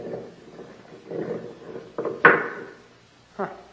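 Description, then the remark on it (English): A heavy stone door with a ring in it, leading into a basement, grinds and scrapes open, with a sharp knock partway through and a dull thud at the end. “There's a stone door with a ring in it.”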